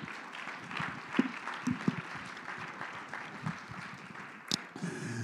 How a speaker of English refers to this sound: Somebody clap their hands unto the Lord.